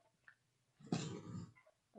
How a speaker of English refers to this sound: Well, we got a dog chewing a toy. We got a dog who has breached a toy in the background.